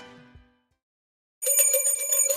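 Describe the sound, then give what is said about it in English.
After a brief fading tone and a moment of silence, a bright bell rings loudly and continuously in celebration, its rapid repeated strikes blending into a shimmering clang with no voices. “We ring the bell for very good reasons sometimes.”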